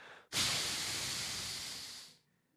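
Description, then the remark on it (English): A single long, exasperated breath blown out hard, an airy, hissing whoosh lasting about two seconds that starts abruptly and slowly tapers before cutting off, with no talking. “And what sound do they make when they are deeply annoyed?”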